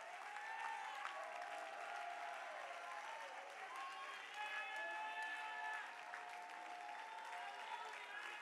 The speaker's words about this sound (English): If you believe God's going to do it for somebody, I want you to release your faith one more time by clapping your hands and lifting your voice with a victorious shout.